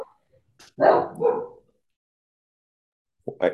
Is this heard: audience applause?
no